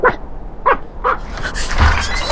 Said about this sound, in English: As I did, the curtain inside, which covered the small windows beside the door, moved slightly, and a tiny dog pressed its nose to the glass and barked.